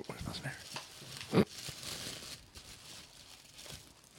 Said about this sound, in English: There's some paper ASMR.